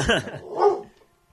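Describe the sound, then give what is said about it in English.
A dog barks twice in quick succession, two short, sharp woofs about half a second apart, clear, with the second bark slightly louder before the sound trails off. “Stupid dog.”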